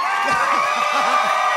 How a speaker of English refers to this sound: Shame on on all of you. How dare you applaud this solemn news? You stop that.